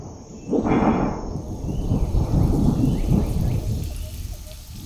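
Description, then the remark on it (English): A deep roll of thunder rumbles early on, then gives way to a steady, heavy downpour that hisses and drums continuously and loudly, with no voices. “Gosh, it's really coming down.”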